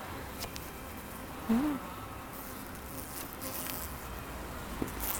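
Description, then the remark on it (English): A dense, steady hum of many honey bees buzzing around a hive frame, continuous throughout with a few brief louder passes of individual bees. “And the bees are actually...”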